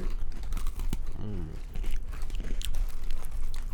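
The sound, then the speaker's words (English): Crisp crunching of someone chewing a hard fruity snack, with irregular sharp clicks and crackles throughout and a brief murmured voice in the middle. “Let's see if the audience can tell what it is just by the crunches.”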